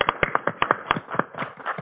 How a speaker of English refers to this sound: With all this applause you're getting, we're going to have you back each week.